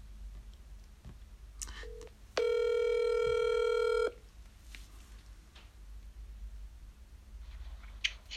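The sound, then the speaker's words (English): A phone call being placed to a friend in New Jersey, USA: a short electronic beep, then one loud, steady ringing tone lasting a couple of seconds before it stops, leaving only a quiet background hum. “I'm just about to ring him now.”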